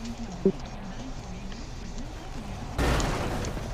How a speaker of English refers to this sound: What? Lord, the stupid Corona crashed into the fence. Wow.